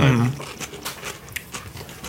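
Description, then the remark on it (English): Soft crunching of someone chewing a radish salad, a series of faint crisp bites in an irregular rhythm, quiet and unhurried with no talking. “Quiet crunch.”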